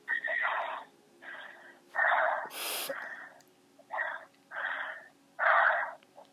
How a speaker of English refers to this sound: Just breathe in and out 5 times heavily with your mouth. 5 times. Breathe in and out 5 times with your mouth. Yes, I'm breathing.